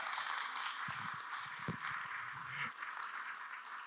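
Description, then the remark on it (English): A church audience claps for their pastor and for Jesus in a dense, steady wash of applause that holds for about four seconds, with a few faint voices or cheers briefly showing through underneath. “All right, now put your hands together and clap for your pastor and for Jesus.”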